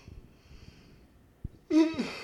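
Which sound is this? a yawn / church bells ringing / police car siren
a yawn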